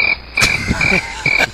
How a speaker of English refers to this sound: Hey, you had to get the one cricket in, too.